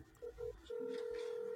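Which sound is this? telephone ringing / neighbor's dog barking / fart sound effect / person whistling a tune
telephone ringing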